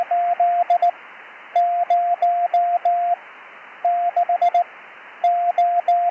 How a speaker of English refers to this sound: In CW modulation, we turn the continuous wave of the carrier on and off in a predetermined pattern that the person on the receiving end can understand. Morse code is the pattern of choice for hams. Here's what CW modulation sounds like.